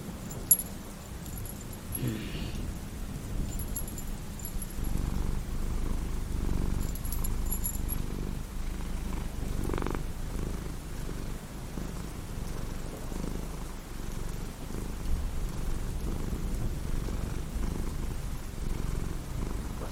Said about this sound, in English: Hey, I told you to stop petting me. Purring? Hell no! I can't control that.